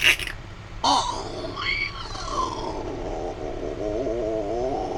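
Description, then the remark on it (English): A door-opening sound effect: a brief burst, then a long, wavering, groaning creak with rising and falling pitch over a low rumble, loud and strained, with no voices. “That's a funny door.”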